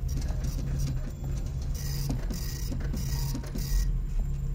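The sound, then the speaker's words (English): A printer printing requested readings at console E runs steadily over a low mechanical hum, with regular ticking clicks and repeated bursts of higher-pitched whirring as pages feed through. “Printing requested readings at console E.”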